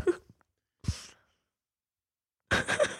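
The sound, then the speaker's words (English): A breathy yawn, caused by weed, drawn out in a few airy bursts, with short pauses of silence between them and a longer, fuller exhale at the end. “I'm just yawning because, yeah, the weed.”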